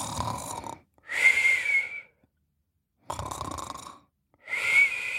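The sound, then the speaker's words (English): A voice imitates snoring: two slow cycles of a rough, raspy inhale followed by a whistling, wheezy exhale, fairly loud with short silent pauses between. “He started to snore.”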